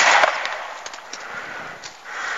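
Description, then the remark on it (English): A small homemade explosive charge, a toxic chemical reaction set off as a demo, goes off with a sharp, loud burst, followed by a sustained crackling hiss and scattered pops that fade slightly and then swell again. No voices. “Nice. Success. We have explosive. Listen to that.”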